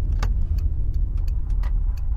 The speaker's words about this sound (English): The car pulls over.